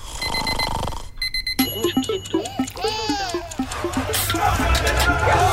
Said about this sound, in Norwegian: Ja, men da setter vi i gang en liten vignett. Vi setter i gang. Nå skal jeg bare trykke på riktig knapp. Vi tar vignetten først.